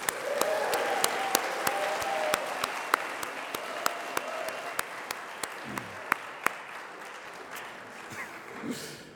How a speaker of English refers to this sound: And we also want to give a very warm welcome to a number of prospective students that we have on campus along with their parents. So if the rest of us, if we can invite them and welcome them with a cheer, that would be great.